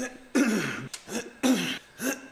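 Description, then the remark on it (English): A series of raspy throat-clearing coughs, about four harsh bursts in an uneven rhythm with brief pauses between, loud with no talking. “Oh, you don't like the cough sound, though.”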